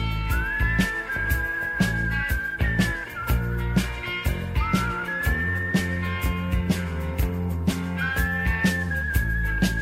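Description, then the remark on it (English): A whistled melody with gliding, sustained notes rides over a full rock band, steady drums and guitars pulsing underneath throughout, the whistle returning in short phrases. “He remarkably finds a little bit of pitch during the whistling parts of this song.”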